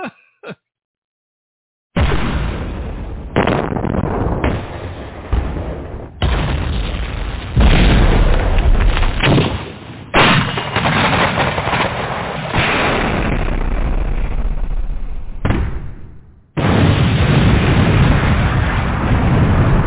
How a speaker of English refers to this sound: But you can't be the blaster master if you're not dropping any bombs on your radio show.